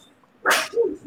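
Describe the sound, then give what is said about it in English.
A single sharp, breathy sneeze bursts out, followed by a short, lower snuffling sound as it fades. No one is talking. “Bless you.”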